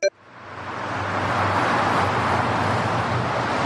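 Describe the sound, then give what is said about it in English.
Steady street traffic noise swells up within the first second, then holds as a dense, continuous roar of passing vehicles with a low engine rumble underneath and no voices. “please give us the traffic noise once again.”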